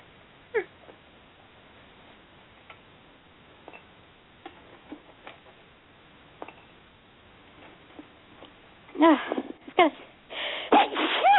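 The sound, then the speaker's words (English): A few faint clicks and taps, then near the end a couple of sudden, loud sneezes burst out one after another, from a person holding a spatula and a plate of cookies with a phone on their shoulder. “Sorry about that. Bless you.”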